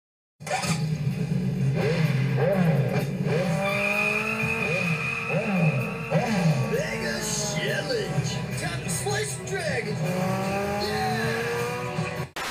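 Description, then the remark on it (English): A motorcycle engine revs loudly and continuously as a performer in a full character costume rides it, its pitch repeatedly climbing and dropping in quick surges, with other vehicle noise and a busy, layered background throughout. “As I believe one example of these visuals is how they had to keep his mouth open when he rode his motorcycle so the actor inside could see out of the front.”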